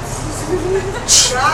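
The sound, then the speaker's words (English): A voice makes one brief, sharp hissing "shh" to imitate a rotary phone dial spinning back. The hiss is fairly loud over a steady low background rumble. “I mean, you look, y'all, I remember the phones where you went, shh.”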